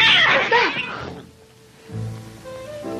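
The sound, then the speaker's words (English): A loud, harsh, strained cat yowl fills the first second, then fades into a quiet background with a faint steady hum and low rumble. “What's that? It's not those cats.”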